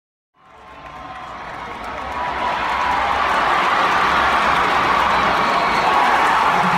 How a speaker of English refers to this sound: This bit of sound is from September 2017. You hear lots of loud cheering. It's because it's a brand new program that's just scored their first touchdown, in front of their home fans, too.